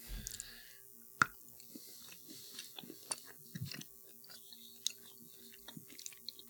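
A sharp crunchy bite into a piece of dark baking chocolate followed by several seconds of wet, irregular chewing and small mouth clicks, fairly quiet with no talking.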